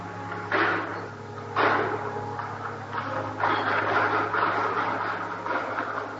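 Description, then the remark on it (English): Heavy doors at the main entrance of a church swing open with a few sharp knocks and a broad, rushing scrape over a steady low hum, moderately loud, with no voices. “the doors at the main entrance to the church opened.”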